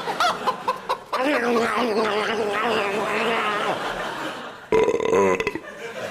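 A chicken clucks and warbles in a long, wavering run of squawks, falls quiet, then lets out a short, loud burst of sharp clucks near the end.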